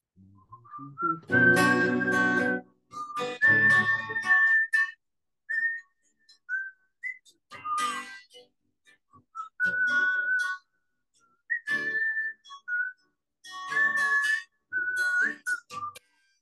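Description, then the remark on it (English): Someone whistles a halting tune in short, broken phrases, the notes thin and uneven with breathy, airy rushes mixed in. It is on its own, with pauses between bursts. “I can't whistle. I'm just trying to whistle.”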